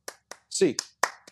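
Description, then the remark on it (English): A quick, evenly paced run of eight sharp hand claps, fairly loud, with a short burst of voice mixed in around the middle. “8 clap time, baby. 1, 2, 3, 4, 5, 6, 7, 8.”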